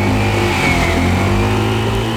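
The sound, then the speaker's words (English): A scooter's small engine revs steadily and loudly, its buzzing drone holding a constant pitch for a couple of seconds with no voices present. “Scooters are a main form of transportation in Taiwan, but they are also a part of many traffic accidents.”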